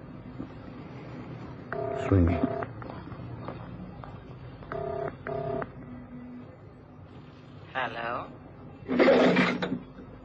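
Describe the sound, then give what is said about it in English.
A telephone being dialed: several short keypad tones beep in quick clusters, clear over a faint background hum, followed by a couple of brief, buzzier bursts toward the end. “I've got a phone number somewhere in my diary here.”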